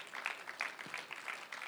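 A round of applause from a crowd, a dense patter of many hands clapping steadily at moderate volume with no voices over it.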